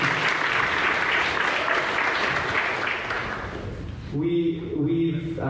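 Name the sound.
audience round of applause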